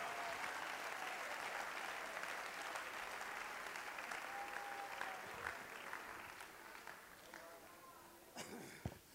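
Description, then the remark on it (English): An audience claps hands in praise to God, a dense, sustained wash of applause for several seconds with a few cheers or voices rising above it before it tapers slightly. “Clap your hands. Give God praise.”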